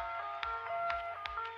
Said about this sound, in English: But they're making like club music, but also it's sad, and you don't know how much this shit makes me happy because I love sad music.